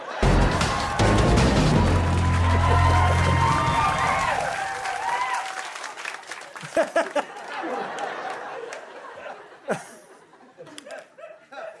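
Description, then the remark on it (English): Loud audience applause with crowd cheering and chatter mixed in, holding steady for a few seconds before thinning out into scattered, sharp individual claps that taper off. “Pretty robust applause there, everybody.”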